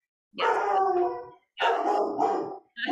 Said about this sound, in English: Sorry, I have dogs.